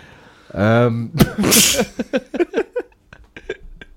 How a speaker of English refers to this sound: the air from a sneeze has been clocked at more than 100 miles per hour.